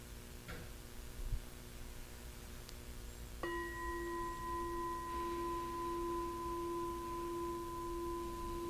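A meditation bell is struck once after a few seconds of low background hum, then rings on with a steady, pure, layered tone that sustains to the end without fading much.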